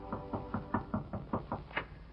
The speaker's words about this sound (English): 1 hour later, just 30 seconds after the bride and groom reach their hotel suite, there's a knock on the door.